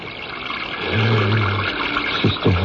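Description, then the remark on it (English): A steady stream of water runs and splashes, with a low hollow tone partway through as if filling a vessel, and a couple of brief gurgles near the end. “Water. Yes, that's why. I'll get water.”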